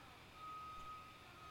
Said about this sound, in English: Can you hear the truck backing up?